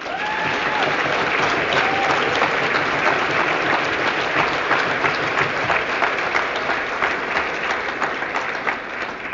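A crowd applauds steadily for the full stretch, dense overlapping claps forming a loud, even wash of sound with a few faint whistles or cheers near the start.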